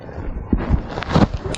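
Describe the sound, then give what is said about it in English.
A person sneezes once, a short, sharp, breathy burst, with a softer rustle just before it and no talking. “Bless you.”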